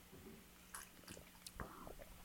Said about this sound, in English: Yeah, I'm going to sip mine because I'm going to spill it soon. Yeah, here we go. Sip.